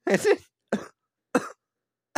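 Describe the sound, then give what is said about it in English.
A run of harsh, heavy coughs: one long rough double cough followed by two shorter hacking bursts spaced apart, with a fourth starting at the end. “God, I just cough up a lung.”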